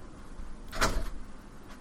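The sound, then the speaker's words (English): A door is opened to let cats come and go, giving one short scraping, creaking burst that fades quickly into quiet with no one talking. “There's going to be cats coming and going, by the way. They can't stand closed doors.”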